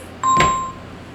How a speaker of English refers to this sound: Who the fuck is calling? Why is your phone? Why is your ringer on, bro?